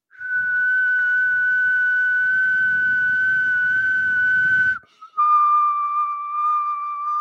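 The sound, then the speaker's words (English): A person whistles one long, steady note with breathy air noise, breaks off for a split second, then carries on at a slightly lower pitch, switching from whistling while exhaling to whistling while inhaling. “I don't have to stop and take a breath because I can whistle blowing out or sucking in.”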